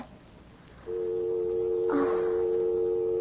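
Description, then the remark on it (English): After a short quiet moment, as the other party hangs up the phone, a steady telephone dial tone switches on abruptly and hums on continuously, with a brief clunk of handset handling partway through. No one speaks. “And if you really want my advice, you'll phone Corey the second I hang up, which is right now.”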